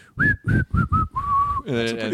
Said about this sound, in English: I can't whistle that well.